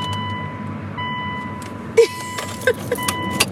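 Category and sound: vehicle, car interior noise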